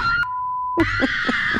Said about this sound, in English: Finally today, hold on tight. These two girls are screaming their heads off on a thrill ride called the Slingshot.